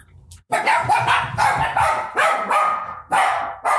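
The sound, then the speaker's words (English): The speakers' own dogs bark loudly in a rapid, continuous string of about half a dozen sharp barks, with no voices alongside. “Well, our dogs agree too.”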